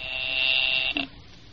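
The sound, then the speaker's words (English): A telephone rings with a harsh, high-pitched electric buzz held for about a second, then a brief second burst before it cuts off, leaving quiet. “I will ring the service department. I am ringing.”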